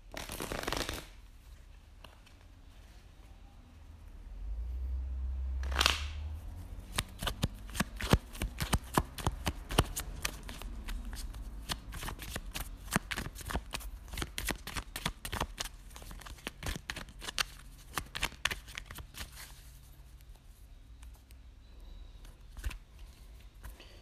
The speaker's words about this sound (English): So nevertheless, here's our December 2021 tarot reading. So let's begin shuffling.